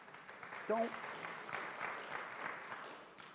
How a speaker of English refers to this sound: I wanted you to feel sorry for me, not clap for me.